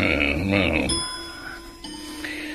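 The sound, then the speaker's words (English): A clock chimes, a bright bell-like tone that rings out and lingers with shimmering overtones, struck again partway through, following a brief murmur of voices at the start. The clock shows the wrong time, loses several minutes every day and has an old owl carved on top. “That clock of yours is wrong.”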